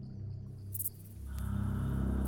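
A hippo's deep, rapidly pulsing call, like an enormous grasshopper chirring, swelling steadily louder over a couple of seconds, with no voices.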